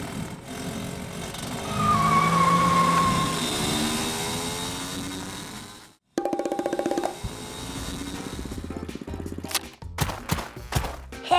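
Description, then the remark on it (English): A car engine roars loudly and revs as the vehicle speeds off, followed by an abrupt cut to a burst of clattering, rattling mechanical noise. No one speaks. “To the canoe car.”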